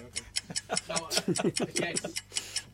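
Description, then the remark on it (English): A quiz countdown clock ticks steadily with sharp, evenly spaced clicks while a person speaks quietly underneath for part of the time. “Can we hear the clock? You can.”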